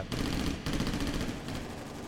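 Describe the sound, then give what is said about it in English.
Sustained automatic fire from an M16 rifle, swept back and forth across a road at bank robbers, crackles in rapid, evenly spaced shots, with a brief break before another dense burst. The volley is loud and continuous, and no one speaks. “But at that point, according to his own testimony later on, he jumped up, held up the M16, and sort of swept it back and forth across the road with his eyes closed.”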